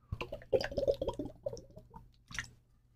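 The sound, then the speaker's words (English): Someone drinks water: a quick, irregular run of wet gulps and swallowing sounds, a pause, then one last slurp before it goes quiet. “I'll let you guys read it on screen while I drink water.”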